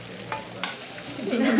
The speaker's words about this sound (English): One of the cooks was frying the Morgan Henley chicken in olive oil